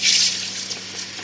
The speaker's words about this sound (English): Then very, very carefully, he pours aluminium that's so hot it's orange into the mould. And the rest gets dumped unceremoniously into a bucket of water.